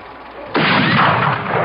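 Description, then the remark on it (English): A single gunshot, fired by a father in the middle of the street to kill a dog, cracks out abruptly after a moment of low hiss, then a loud, rough wash of noise rolls on and lingers without fading much. No voices are heard. “Didn't you know your daddy's the best shot in this county?”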